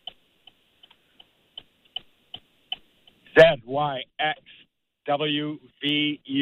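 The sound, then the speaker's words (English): A game timer clock for a contest ticks steadily, sharp clicks coming at a quick, even pace for a few seconds, before someone starts talking loudly over it. “I will start the clock when you start.”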